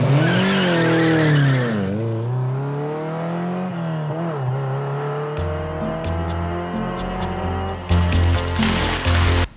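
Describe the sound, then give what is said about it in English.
A Ferrari sports car engine roars and revs up through several gear changes, with a burst of tire squeal at the start and sharp ticking noises near the end, loud, no talking. “It's worse enough when you're in the car with someone who's in a bad mood, but when you're fighting with someone and you guys are in a Ferrari, I'm sure it's much worse.”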